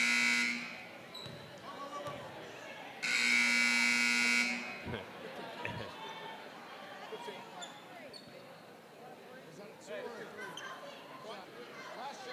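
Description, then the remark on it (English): A harsh, loud electric buzzer is honked twice at a table to get a player's attention: a short blast at the start, then a steadier one lasting about a second and a half. Murmuring voices and busy background noise continue around it. “Might buzz have to it. Honk it.”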